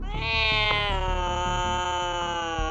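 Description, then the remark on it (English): A cat lets out a long, sustained angry yowl, loud, its pitch wavering slightly as it drags on without a break, over a low rumbling background. “Clearly, that is one angry kitty.”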